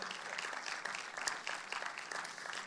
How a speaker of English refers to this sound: So you don't have to clap, but if you feel that you want to clap, you can clap.